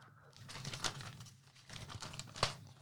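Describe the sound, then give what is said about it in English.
Crackly rustling of paper being handled and smoothed out, readied to write down NBA games, with a few sharper crinkles standing out against a low background hum, and no voices. “Hold on, let me get my paper ready to write these down.”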